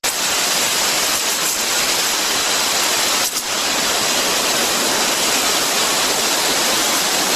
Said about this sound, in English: This is a special sprayer. It's called an arborist sprayer. It has a 700 PSI, 800 PSI. It can shoot up above the heights of the trees.